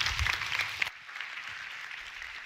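A crowd claps in dense, steady applause that thins out after about a second, leaving a softer, scattered patter of claps trailing off. No one speaks.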